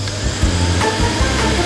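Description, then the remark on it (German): A vacuum cleaner, used by a colleague cleaning during a radio broadcast, runs with a steady, loud motor drone, a low humming rumble under a broad whooshing hiss, with a few brief bumps and clicks along the way. “Klingt besser, wenn der Staubsauger aus ist.”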